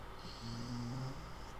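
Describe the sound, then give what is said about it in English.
A dog, Ollie, lying on a person's lap on the couch lets out a single low, rumbling groan lasting under a second, soft and breathy like a snore, with no talking around it. “Can you hear him groaning?”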